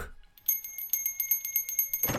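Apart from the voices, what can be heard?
small hand bell ringing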